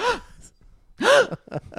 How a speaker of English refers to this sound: In any event, we got an … reaction that another just high drag moment where I'm just like, oh, when … was safe, that gasp. Yes, oh my God, gasp. That was great.